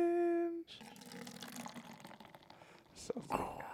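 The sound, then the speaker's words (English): Beer pours into a glass, a steady fizzy splashing stream that runs for a few seconds after a short humming tone, with a couple of brighter splashes near the end. “listen to the pour.”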